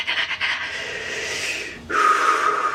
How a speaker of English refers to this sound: Deep breath.